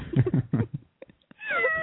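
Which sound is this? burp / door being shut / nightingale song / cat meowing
cat meowing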